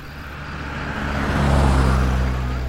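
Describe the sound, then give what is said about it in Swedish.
A limousine's engine grows steadily louder as it approaches, a low rumbling hum swelling over a couple of seconds with no voices present. “Det kommer en bil. Kan vara en patrull.”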